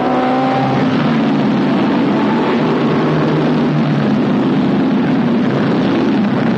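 Loud, continuous roar of race car engines speeding around a track during a main event race, with one car trying to crowd another off the track. A dense rumbling drone with a brief higher whine at the start, no voices.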